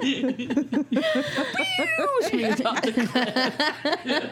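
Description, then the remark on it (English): A cat named Platoons lets out a drawn-out, wavering meow near the middle, fairly loud, while people talk and chuckle around it. “Platoons is the cat.”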